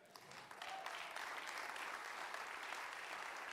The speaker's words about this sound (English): And while I appreciate the applause, I really do. It means so much to me.